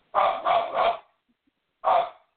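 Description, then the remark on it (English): A dog barks three times in quick succession, pauses briefly, then lets out one more bark. The barks are loud, with no talking. “okay, this is the part where my husband comes in, so I'm going to just gonna bear through the barking.”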